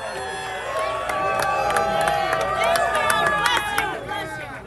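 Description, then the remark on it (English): A large rally crowd for President Donald Trump in Urbandale, Iowa, cheers and whoops continuously, with many overlapping voices shouting and calling out, loud, swelling in the middle before easing slightly toward the end. “And let's see how his reaction is with the crowd.”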